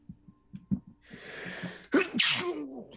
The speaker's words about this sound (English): Bless you. Thank you. That was the biggest blooper in recording.